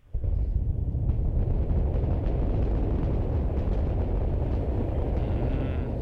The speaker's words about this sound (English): There we go. That's the static fire test. SpaceX Starship Super Heavy Booster 9 static fire test.